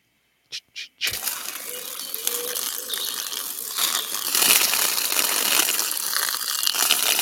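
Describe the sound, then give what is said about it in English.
Someone pees onto dry leaves: after two quick rustles, a steady crackling, splattering hiss runs for about six seconds, swelling louder partway through, with no talking. “Oh, somebody's peeing on the leaves.”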